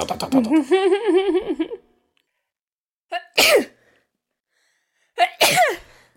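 Two loud sneezes a couple of seconds apart, each a sharp inhale followed by an explosive burst, preceded by a wavering, drawn-out vocal sound.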